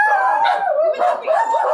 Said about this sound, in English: Okay, we had to pause that for a second because there's someone at the door, and when you have 3 dogs that are all very vocal, they're very protective.